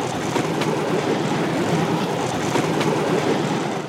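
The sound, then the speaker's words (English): An oncoming bamboo train on the Bamboo Railroad rumbles along the rails, a loud, steady engine drone and clatter that fills the whole stretch, with a few faint clicks and knocks over it and no voices. “when suddenly I encounter an oncoming train.”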